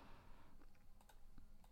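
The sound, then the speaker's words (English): Several faint computer clicks, irregularly spaced and quiet, sound over a steady low background hiss, with no one talking, as someone clicks through news web pages. “Like, I'm clicking through right now just to see, like, Americans' new stealth hunter killers have arrived in the nick of time, whatever that means.”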